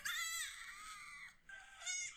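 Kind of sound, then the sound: animal, lamb bleating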